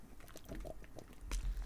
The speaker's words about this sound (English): Let me just take a quick hit of water here.